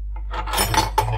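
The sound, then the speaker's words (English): Dirty dishes and cutlery clink and clatter together as they are handled for cleaning, with no plug in the sink; a few bright knocks over about a second with no one talking. “So, today, my boss has left me dishes to do, dirty dishes to clean.”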